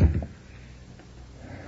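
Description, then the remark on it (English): A police officer tries the handle of a closed store's door, giving a short burst of rattling, clunky knocks at the start before the room falls back to a low, quiet hum. “A cop goes by, trying the doors.”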